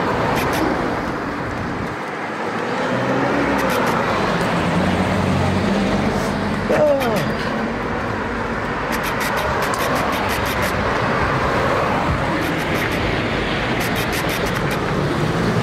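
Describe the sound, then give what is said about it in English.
Steady, loud road traffic rumbles by as someone tries to cross the road, with engines droning and vehicles passing continuously along a busy street, plus faint background clatter and no clear speech. “Just trying to cross the road here, bro.”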